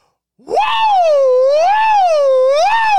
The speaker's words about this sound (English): Woo! Ooh. Little siren there? Yeah. Siren woos? Have you done that before? I think that might be new.